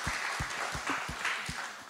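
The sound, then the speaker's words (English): A crowd applauds steadily for the guests at the close of a church service, a dense wash of clapping with a few louder, rhythmic claps or thumps standing out about three times a second. No one speaks over it. “But let's just give these guys a hand as we close.”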